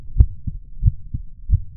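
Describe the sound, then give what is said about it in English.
Deep, steady booming from the distance, shaking a house, heavy low thuds landing in paired beats, about three pairs in a slow, even rhythm like a pounding heartbeat, with no voices. “What's more, you hear the faintest booming in the distance, steady and rhythmic, shaking the house.”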